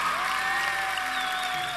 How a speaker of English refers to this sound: Oh, clap louder. Worship team, come on back up. Come on back up. Worship team, clap louder, because that's worth clapping over.